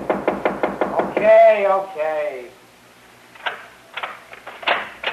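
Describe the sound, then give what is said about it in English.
A rapid series of loud knocks on a door, about seven sharp raps in a row, followed by a person speaking and a few quieter bumps. “Come on, open the door”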